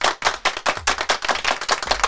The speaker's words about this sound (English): This guy did 20 feet of backflips on parallel bars. That is amazing. Let's give this dude a big round of applause.